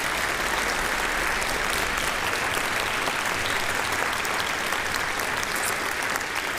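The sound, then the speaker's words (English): A large concert audience applauds the Batavia High School Wind Ensemble, the Rotolo Middle School Symphonic Band and their teachers. A dense wash of clapping hands holds at an even, loud level throughout, with no voices standing out. “How about another round of applause for these teachers and students and the wonderful work they're doing in Batavia?”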